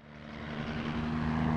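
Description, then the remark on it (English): A helicopter's steady engine drone and rotor hum at Bougainville, swelling slightly louder as it approaches and holding continuous for the whole moment, with no voices. The helicopter is used to investigate the Panguna copper prospect. “With the arrival of the helicopters at Bougainville, CRA makes possible a speedy and more economical investigation of the Panguna prospect.”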